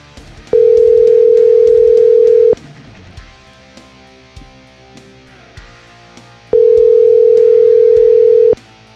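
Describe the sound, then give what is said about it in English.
Two long, steady ringback tones of about two seconds each, separated by a pause, sounding through a phone line on an outgoing call, with faint background noise and clicks between the rings. “There's no way he's gonna get on the phone here. That's too many rings.”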